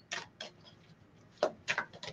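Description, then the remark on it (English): A deck of cards, sticking together from not being used in a while, being shuffled: about six crisp, papery slaps and flutters in uneven bursts, a couple of them louder, with faint handling noise in between and no voices. “These are sticking together because I haven't used them in a while. I'm like, okay, y'all, come on. Shuffle for mama.”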